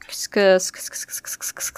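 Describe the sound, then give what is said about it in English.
A single loud, voiced burst like a sneeze, followed by a steady run of short, hissy scratching or rubbing strokes in a regular rhythm. “God bless you.”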